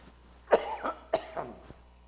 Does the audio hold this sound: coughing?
yes